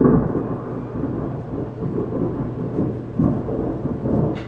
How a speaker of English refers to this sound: Is that thunder? Yeah.